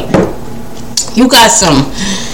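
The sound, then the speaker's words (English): Someone sips water from a glass, with a light clink of glass and wet swallowing sounds over a couple of seconds, plus soft breathy vocal noises. “Hold on, let me just drink my water.”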